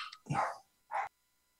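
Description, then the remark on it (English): A dog barks twice in an office as several dogs come in, a longer, fuller bark followed by a short, sharp one, with no talking around them. “Yeah, I'm in the office and all the dogs just came in.”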